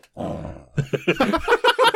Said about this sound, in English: Well, it's easy, because she wants to play tug-of-war. I just got to drag her up to the mic, and she just growls. Right, Lola?